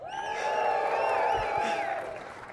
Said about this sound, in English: what I'm going to do is I'm going to do a double backflip and land on my pinky, and when I do that, I need everyone to cheer as loud as you can, okay? Ready? One, two, three, double backflip, land on my pinky!